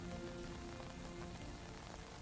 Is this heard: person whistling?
no